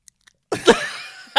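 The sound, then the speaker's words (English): A loud crunchy bite: a couple of faint clicks, then a sharp crunch that peaks and trails into a brief crackling chew, with another crunch starting at the very end. “That sounded crunchy.”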